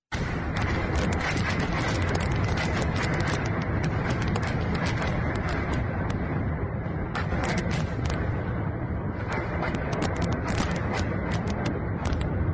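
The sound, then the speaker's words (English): Russian rockets pound a city in Ukraine in a relentless barrage: a loud, unbroken low roar peppered with rapid, irregular sharp cracks and bursts, with no voices. “Here's a little bit of some of the sounds of rockets, the Russian rockets raining down on another city nearby.”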